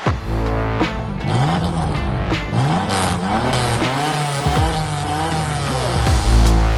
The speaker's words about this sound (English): Oh yeah, that car sound is courtesy of Artem and his 1986 TVR 280i. This is a very, very cool car. That is, by the way, the TVR Tasman, I should clarify, the Tasman 280i.